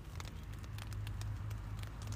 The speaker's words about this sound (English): And I thought, oh, I'd love to set the tent up there, because it's going to rain tonight. And I don't know, actually, can you hear the rain now?